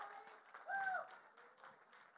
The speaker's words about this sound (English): And so if all the Kai Alpha leaders could just stand up for me. If you see somebody in this green shirt, you guys should give them a clap too. We kind of like them.